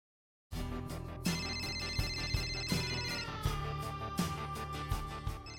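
A phone rings with a melodic electronic ringtone, a steady repeating pattern of bright sustained tones that plays loudly for several seconds with no voices.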